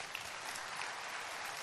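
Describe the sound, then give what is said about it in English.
An audience bursts into steady, dense applause for Jesus, many hands clapping together in a continuous crackling wash that holds at an even level throughout the short moment. “Clap for Jesus.”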